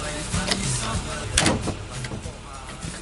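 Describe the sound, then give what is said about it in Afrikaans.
A door is pushed shut with one brief, solid thud midway through, set against a low background murmur that sounds like indistinct voices. “Kom ons gaan in. Maak die deur toe.”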